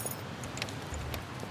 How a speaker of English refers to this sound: The only word she said was shit, as she dropped her keys while extracting them from her handbag to her apartment door.